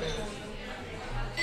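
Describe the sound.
Glasses of tequila clink together in a toast, a brief bright ring near the end, set against a low background of voices and room noise.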